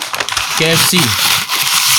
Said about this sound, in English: Now it's just a carton. It's just a carton moving around.